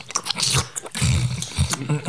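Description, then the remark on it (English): Someone imitates munching popcorn at a movie theater with their mouth: a loud run of crunchy chewing and smacking noises in quick, uneven bursts over about two seconds. “I like to munch popcorn, and I'm always afraid that I'm like the really annoying guy that's like, you know, like constantly sitting next to you just...”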